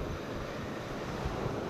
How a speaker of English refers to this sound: Hope the waves don't bother everyone, but instead are more of a soothing sound.